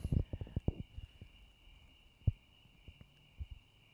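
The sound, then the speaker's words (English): Crickets chirp outdoors under the stars in a faint, steady high-pitched drone that runs unbroken throughout, with a few soft low thumps and knocks scattered over it and no one speaking. “I thought it would be funny just to let the crickets go.”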